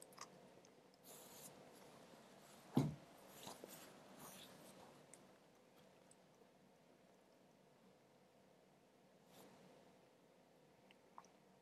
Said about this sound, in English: Sorry you have to hear my chewing. Just had my microphone on.